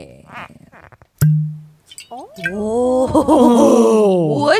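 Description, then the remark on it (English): A wine key pulls the cork from a bottle of full-bodied, dry 13.1% ABV wine: after some quiet rustling, the cork pops out once with a sharp, loud snap and a short hollow low ring. A voice then lets out a long, wavering, groan-like vocal sound. “I'm affixing my nice pop wine key”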